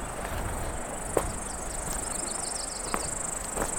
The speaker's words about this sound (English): Noisy grasshoppers up ahead.